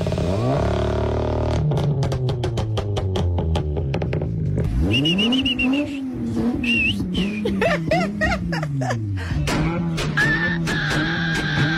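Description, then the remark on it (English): A car engine, loud, chugging with rapid rhythmic firing pulses, then revving up so its pitch rises and falls through several throttle blips, with no voices. “That's my feeble attempt at a moment there with the sound of that engine.”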